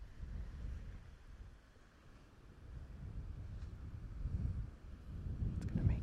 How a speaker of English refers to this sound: Like right now, my guess is that you can hear my whisper well enough, and you can hear subtly the waves crashing in the background.